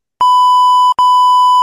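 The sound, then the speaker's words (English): A loud, steady censor bleep tone sounds twice back to back, the first running nearly a second and the second following after a tiny gap, with no voice audible. “You can beep it out.”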